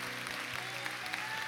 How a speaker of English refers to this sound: Let's just give God a round of applause first, though. What a great God.